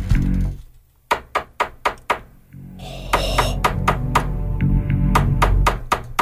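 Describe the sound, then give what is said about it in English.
Sharp knocks on a door, reenacted: a quick, even run of about five, a brief pause, then a longer irregular series of raps over a low, steady background rumble. “And then she's like, "No, seriously, somebody's at the door."”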